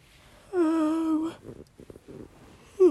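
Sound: yawn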